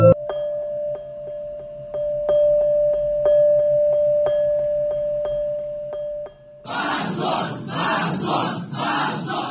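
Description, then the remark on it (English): In a courtroom, a crowd bursts into loud, rhythmic protest shouting of "Shame on you" in repeated beats after a seven-year prison sentence is announced, following several seconds of a steady electronic tone punctuated by regular clicks. “Immediately, everybody started shouting. Shame on you. Shame on you.”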